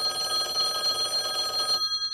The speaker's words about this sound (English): About 10:30, the telephone rang once more.